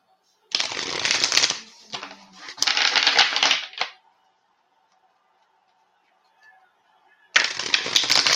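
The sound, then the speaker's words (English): A deck of cards being shuffled up close, in three loud, crackling riffles: two back to back, then a pause of near-quiet before a third begins at the end. “Honestly, I shuffle at this point out of habit.”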